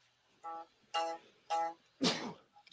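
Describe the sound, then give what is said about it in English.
Three short, voiced gasping breaths in a steady rhythm build up to one loud, explosive sneeze, followed by a faint sniff. No talking. “Bless you.”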